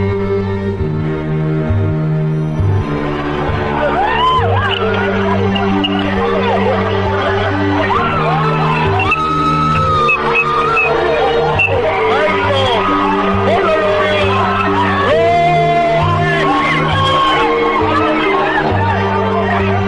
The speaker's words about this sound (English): You can see hear the people screaming in the back